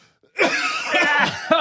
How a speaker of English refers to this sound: In fact, every time I cough during this interview with … because I'm fighting something, I feel bad